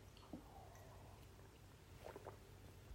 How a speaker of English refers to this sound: Coffee sip.